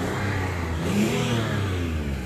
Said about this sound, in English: Hey, do a burnout. Yo, burnout.